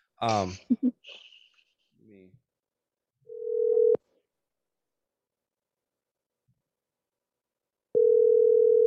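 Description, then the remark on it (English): A brief muffled voice, then the ringback tone of an outgoing phone call: a steady, clear ring, a long silent gap of about four seconds, and a second ring starting as the call goes unanswered. “I'm going to attempt to call Eric. He's a little bit pressed for time”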